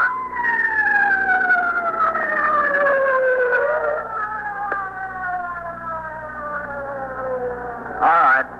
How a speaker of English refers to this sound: Listen, Captain. Wait a minute. Hold on. The ambulance is just coming up here. I can't hear anything you say.